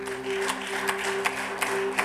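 Five sharp claps at a steady, even pace, roughly three per second, sounding over a constant low electrical hum with no talking.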